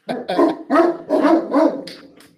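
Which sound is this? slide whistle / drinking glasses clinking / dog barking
dog barking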